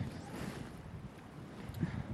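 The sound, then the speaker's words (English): Steady cold outdoor wind buffets the microphone on a muddy bank with a continuous low rumble and broad hiss, even in strength for the whole stretch, with no one talking. “It's cold and windy, but I'm layered up well.”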